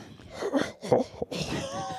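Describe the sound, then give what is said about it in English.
A person clears their throat in a few rough, raspy bursts, with a wheezy, strained edge and brief pauses between them. “Clearing your throat.”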